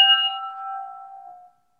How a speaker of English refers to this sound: what starts to happen is more like what happens when you clink two good crystal glasses together.